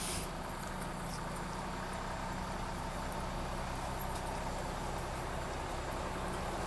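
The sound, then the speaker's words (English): A loud truck passes, a steady engine roar with deep low hum and broad road noise that fills the whole stretch without pause. “okay, we're passing a loud truck. Hold for truck.”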